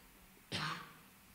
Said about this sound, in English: That was just to clear my throat.